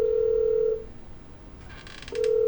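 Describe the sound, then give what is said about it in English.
A phone line rings in the earpiece as a sheriff calls Deputy Dillbender's house: a steady electronic ringback tone sounds, cuts off into a quiet gap with faint crackle, then starts again, clear. “Let's see, it's ringing. It's ringing.”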